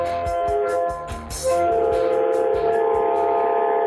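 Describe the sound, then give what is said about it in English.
A loud, sustained train horn blares with steady droning tones, swelling louder halfway through and holding to the end over a quick, regular low thumping rhythm. “Train horn.”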